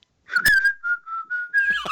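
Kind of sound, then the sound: human body sound, person whistling a tune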